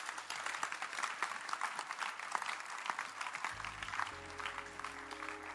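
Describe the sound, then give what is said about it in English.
A church audience claps steadily for several seconds for the Lord Jesus, a dense crackle of many hands with no pauses. A low sustained keyboard tone enters partway through and continues under the applause. “Clap again for the Lord Jesus.”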